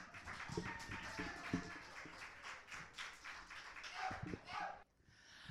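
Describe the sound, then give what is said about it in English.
A crowd applauds steadily for a poet after her scores are announced, as the next poet comes to the stage: a dense wash of overlapping claps with some louder individual hits and murmuring voices mixed in, dropping off briefly near the end before picking up again. “Clap for that poet. And keep clapping, because on her way to the stage is”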